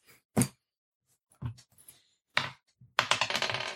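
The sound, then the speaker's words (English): Dice clatter across a hard tabletop in several short bursts, ending in a longer rattling tumble of quick clicks that bounce and settle. Fairly loud, with no voices. “Nat 20 again. Nat 1 on that.”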